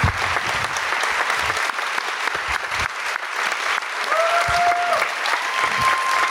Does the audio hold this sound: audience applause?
yes